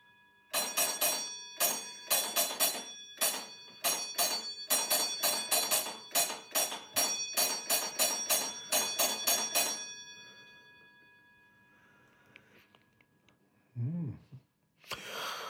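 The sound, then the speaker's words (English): A signal bell rings loudly and rapidly in repeated bursts of strikes for about ten seconds, its tone lingering and fading afterward, followed by a brief breathy sound near the end. “I think we should go with something grander this time. Signal bell, do we have reason to fear the machines?”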